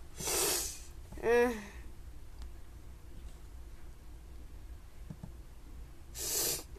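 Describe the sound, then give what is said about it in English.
Two short, breathy nasal sniffs from someone with little sniffles, one at the start and one at the end, with a brief voiced throat sound in between and quiet room noise otherwise. “Yeah, I did have little sniffles, so yeah, that's why I'm sniffling.”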